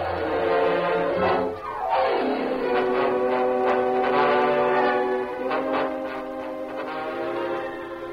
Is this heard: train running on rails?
yes